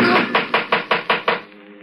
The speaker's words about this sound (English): It was knocking at the door.